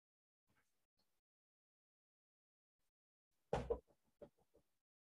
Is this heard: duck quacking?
no